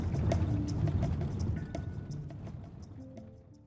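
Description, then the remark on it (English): Repeated splashing and sloshing of water as people scrub clothes in a shallow pothole puddle of fresh rainwater after a night of heavy rain, with scattered drips and a low wet rumble that gradually quietens. No one speaks. “using the puddles of fresh rainwater collected in the potholes to wash their clothes.”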